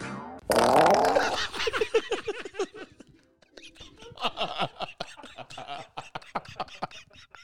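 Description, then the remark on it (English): A loud, buzzy fart sound effect bursts out near the start and rumbles for about a second, followed by quieter breathy, whispery voices and scattered muffled sounds. “And then hear the fart.”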